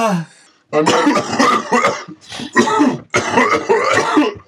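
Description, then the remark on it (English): A hard coughing fit: loud, harsh coughs come in several rough clusters one after another, barely pausing between bursts, after a brief quiet moment at the start. “Like, you well, know, you know when you cough so hard you start to sweat?”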